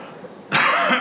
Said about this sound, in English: Excuse me. I tried to cough away.